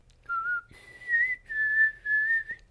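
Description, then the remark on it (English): A thin, feeble whistle of four breathy notes, the first lower and the rest held slightly higher, wavering and fairly quiet, with no talking. “that was the most pitiful whistle I've ever heard in my life.”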